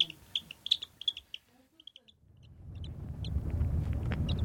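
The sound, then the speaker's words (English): An eaglet chick, full after feeding and drooping into a baby blue sheet, coos contentedly in a string of short, high peeps, quick bursts at first, then sparser. A low, steady rumble swells beneath the later calls. “Finally full, the chick droops into a baby blue sheet, cooing a new contented call.”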